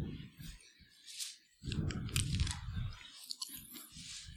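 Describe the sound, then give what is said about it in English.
A cough drop is popped into the mouth, followed by a few seconds of wet clicking, sucking and crunching mouth noises, fairly loud, with no talking. “I've got to learn to put this cough drop in a whole lot earlier.”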